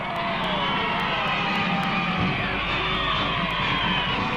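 A dense, continuous roar of immense cheering crowds along Fifth Avenue in New York at a welcome-home victory parade, with overlapping shouts, whoops and yells blending into a steady loud wash of voices throughout.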